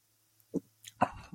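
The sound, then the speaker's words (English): A few short, wet mouth sounds of someone taking a first sip of a 6.2% alcohol Bailbreaker hazy IPA beer from a can and swallowing, quiet and spaced out with no talking. “I'm going to take my first sip as I haven't had my first sip here”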